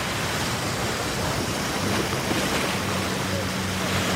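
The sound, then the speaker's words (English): Water churns and swirls steadily alongside a boat where about a dozen whirlpools, each roughly 3 or 4 feet across, spin in the water; a continuous rushing wash mixed with wind buffeting the microphone, fairly loud with no pauses. “There are a dozen whirlpools just like it on this side of the boat.”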